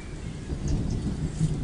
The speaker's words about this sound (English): And this, probably what is almost certainly the warmest day of the year so far. We're in the middle of April. These bands of weather colliding, and the lightning is flashing across the sky.